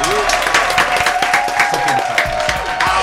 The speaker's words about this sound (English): Can we clap it up one time, please?